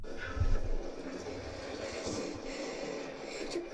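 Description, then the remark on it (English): A whale blowing through its blowhole: a strong, breathy rush of air that opens with a low, rumbling burst and then continues as a steady, noisy hiss for several seconds. “That's a whale.”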